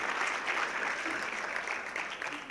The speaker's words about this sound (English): I think you should applaud for that.